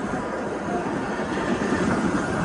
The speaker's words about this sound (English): The suspect was in the vehicle that was hit by the train. And you can hear the train is trying to stop. It takes like a big freight train could take a mile for the train to stop.